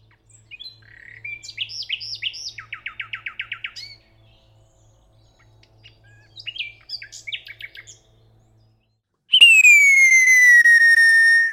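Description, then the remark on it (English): A recorded real nightingale sings two bursts of varied phrases with rapid repeated trilling notes, clear, followed by a sudden loud, sustained whistle that slides slightly downward. “here's a nightingale we recorded earlier.”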